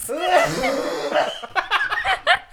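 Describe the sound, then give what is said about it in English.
A strained, laughing voice gives way to a run of harsh, painful coughs, several rough bursts in quick succession, fairly loud. “It is appropriate to cough when such things are said. That cough hurt.”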